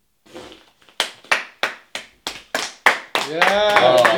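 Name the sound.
clapping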